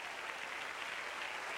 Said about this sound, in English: Come on, clap your hands. Let's generate some faith in this place.